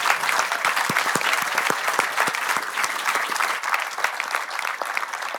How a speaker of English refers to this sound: Thank you very much. Can I have another warm round of applause for you, please, for our speakers?